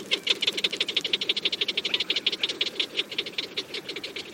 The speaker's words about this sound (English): These white-tailed prairie dogs might have been laughing at producer Jeff Rice as he recorded their calls with a large parabolic microphone in Deseret Ranch in northern Utah.